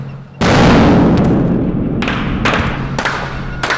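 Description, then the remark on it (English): A bomb explosion hits the lead car of a convoy among shipping containers, bursting in suddenly and loudly, then a heavy roar of noise lingers, punctuated by several sharp cracks or bangs. No one speaks. “a bomb hits the lead car.”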